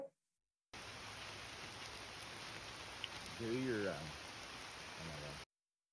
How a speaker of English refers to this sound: Lovely summer rain.